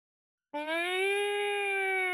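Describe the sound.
A person imitates a police siren with one loud, sustained vocal wail that rises slightly in pitch and holds steady, sounding somewhat like a yowling cat.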